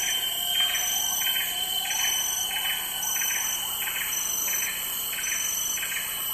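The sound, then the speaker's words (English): A dawn chorus of birdsong: several birds calling at once, one repeating a chirping phrase in a steady rhythm about twice a second over a continuous layered backdrop of higher calls. No talking. “It's the dawn chorus.”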